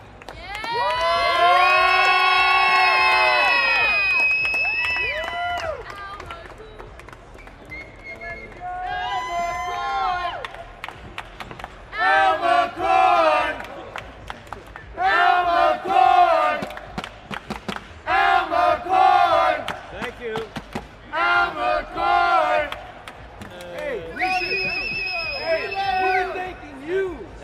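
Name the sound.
arena crowd cheering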